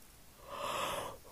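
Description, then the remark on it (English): A single drawn-out yawn, a breathy rising exhale that swells and then fades over about a second, with no talking. “Get to hear my yawn.”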